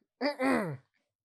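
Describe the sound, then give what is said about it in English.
A person makes a single voiced thwomp noise with their mouth, a brief loud swell in two pulses that slides downward in pitch, heard on its own. “Did you hear my thwomp noise right there?”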